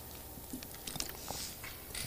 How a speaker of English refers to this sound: And I'm going to drink some water before I keep going because I almost stopped.